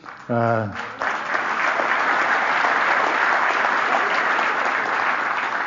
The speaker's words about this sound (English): I assume you're clapping for her.